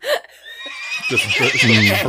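A horse whinnies loudly, a high, wavering neigh that trembles for about a second after a brief snort and short pause.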